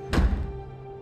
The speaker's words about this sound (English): She whisked inside and slammed the door.